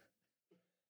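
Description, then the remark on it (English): A single short cough bursts out midway, a rough voiced hack that quickly fades into a low lingering hum, with a faint breathy sound just before it. “sorry about the cough.”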